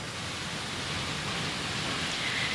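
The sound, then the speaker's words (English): Ocean waves make a steady, unbroken rushing wash, a full hiss of surf with no distinct breaks or swells, holding an even level throughout with no voices. “I hope that the children screaming and laughing in the background didn't distract you too much, that the waves of the ocean, I hope that you felt supported by these waves as I do.”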